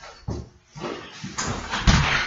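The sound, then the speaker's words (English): A door is pushed shut and locked with a few heavy knocks and rattling clunks, the loudest thud near the end as the lock is worked. No talking. “If you'll go out and lock that door, okay?”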